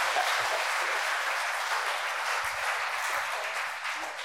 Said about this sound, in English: So I think you should give them a round of applause for being willing to talk about it.